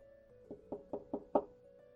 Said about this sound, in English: So Brigand is not going to be the one that knocks on the door. It's going to be Killa, which is the more level-headed of the duo. So it would be kind of like a, you know, a fairly light knock, but deliberate.